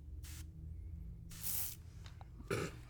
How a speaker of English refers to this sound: If you guess that was a Febreze aerosol can. What flavor? Lavender. It's a scent. It's not a flavor.